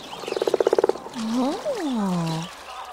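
A quick run of about a dozen rhythmic frog croaks, fairly loud, followed by a few longer swooping, warbling calls that rise and fall before fading out.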